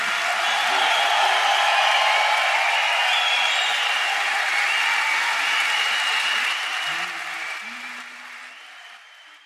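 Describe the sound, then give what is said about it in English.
Loud, sustained applause from a large audience at a classical music concert, dense clapping with a few cheers mixed in, holding steady before gradually thinning and fading out toward the end. “Well, you normally would not hear applause like this for a classical music concert, right?”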